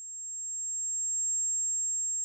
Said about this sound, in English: and this is my tinnitus.